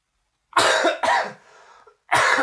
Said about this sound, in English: Before I have to say you're my friend, I'm going to cough again.